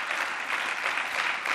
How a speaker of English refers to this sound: So can you just join with me and just give the Lord a great applause?